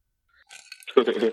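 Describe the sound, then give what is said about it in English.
Someone crunches ice in their mouth: a few crisp, brittle crackles followed by a louder burst of grinding, chomping chews, all within about a second with no talking. “I'm chewing ice because.”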